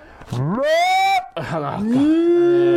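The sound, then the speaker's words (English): A person imitates a cow, letting out two long, loud, drawn-out moos with rising pitch, one after the other. “We're doing cow noises.”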